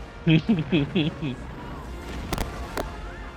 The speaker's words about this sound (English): Alright, who set up the fireworks inside?